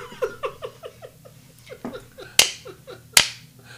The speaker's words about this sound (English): That was a Nancy clap.